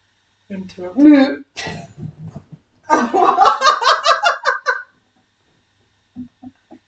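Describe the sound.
A person's voice imitates a cow with a low, drawn-out moo as the punchline of an 'interrupting cow' knock-knock joke, followed by a louder, longer stretch of lively vocal noises and a few faint short sounds at the end.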